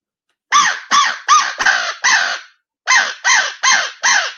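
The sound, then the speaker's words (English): Loud crow caws blown on a locator call using a gargle and uvula roll: five harsh, gargling calls in a rapid run, a brief pause, then four more in the same aggressive, evenly spaced rhythm. “I'll get you some good crow calling, getting aggressive, using that gargle, that uvula roll.”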